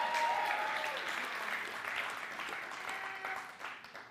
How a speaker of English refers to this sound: How much more joy? How much more celebration? How much more clapping? How much more shouting? How much more dancing?